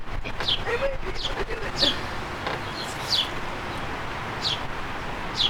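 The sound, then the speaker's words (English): Thin, high chirps of two baby birds as their mother feeds them, short descending tweets repeating about every second over a soft outdoor rustle, with faint voices in the background. “Mommy's feeding two babies.”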